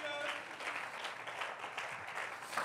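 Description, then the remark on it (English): An audience claps hands together in steady, dense applause during a sermon, clapping in praise of God, a continuous rattle of many overlapping claps that stays fairly even in loudness throughout, with no voices standing out. “Oh, clap your hands and praise him with me.”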